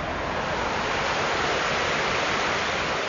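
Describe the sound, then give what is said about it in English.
Water rushes steadily over a dam built more than 200 years ago in Watertown, Massachusetts, which once powered mill buildings now Sasaki's world headquarters; a dense, unbroken roar of churning flow that holds an even, fairly loud level from start to finish, with no voices. “A dam built more than 200 years ago once powered the series of mill buildings that make up Sasaki's world headquarters here in Watertown.”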